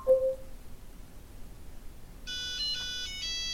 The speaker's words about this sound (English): Would you like me to help you find your robot? Yes. Listen for your robots to chime 5 times.